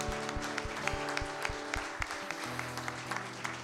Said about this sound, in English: Before you're seated, can you give the Lord one more hand clap of praise?